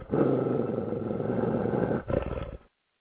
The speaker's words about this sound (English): Well, somebody get that dog out of here.